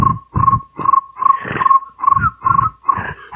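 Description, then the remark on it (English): A person imitates crickets chirping with a uvular trill, about seven throaty, rolling pulses in a steady rhythm alongside a thin, sustained whistle-like tone. It is fairly loud, with no other talking. “It's a uvular trill.”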